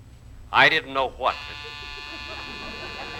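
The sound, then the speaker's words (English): A brief burst of a voice gives way to a steady electric door buzzer, rung by a man from Beacon's Van and Storage Company at Mr. Benny's door, a harmonically rich, flat drone that sounds unbroken at moderate loudness for about two seconds. “There's the door buzzer.”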